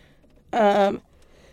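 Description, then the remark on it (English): A single short, voiced sneeze bursts out abruptly and cuts off after about half a second, fairly loud, with quiet room tone before and after. “Bless you.”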